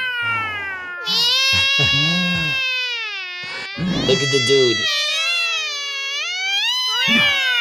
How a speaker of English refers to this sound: Look at the cats, bro. Cats is going at it.